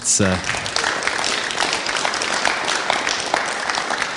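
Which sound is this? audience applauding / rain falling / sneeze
audience applauding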